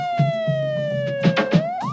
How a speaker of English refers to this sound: Streams of ambulances came to carry away the dead and the injured.